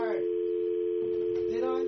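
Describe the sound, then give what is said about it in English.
A steady, unbroken telephone dial tone, heard after a call was hung up, hums at an even volume through the whole clip, with someone's voice briefly talking over it at the start and again near the end. “Because I hear a dial tone.”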